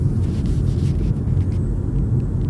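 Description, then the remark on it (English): Steady low-frequency rumble of a car's interior while driving in the middle of the night, a constant engine and road drone that fills the whole stretch without pauses, with no voices present. “We are out here in the middle of the night just doing jack shit. Driving.”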